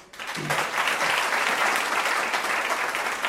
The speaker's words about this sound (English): So I just want to welcome each and every one of you, and then just a round of applause for all of you.